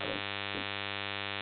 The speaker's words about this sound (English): And we haven't done this in a while, so I'm just kind of get the bug that I'm hearing a lot of static in the back, but it's not that bad.